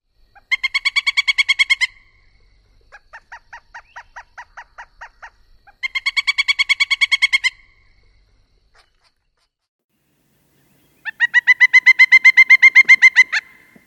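A pileated woodpecker calls in three loud, rapid series of ringing notes, each about two seconds long, with a softer, slower string of notes between the first two; no one speaks.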